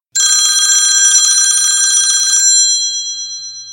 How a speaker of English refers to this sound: It looked wonderful, and it was done just in time as the phone rang.